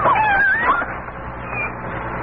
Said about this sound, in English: Well, it's a kitten. Just a tiny little kitten.